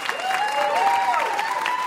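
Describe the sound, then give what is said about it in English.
A crowd claps steadily throughout, a dense, even wash of applause, with a thin sustained tone gliding up and then leveling out over it. “So we applaud you for that.”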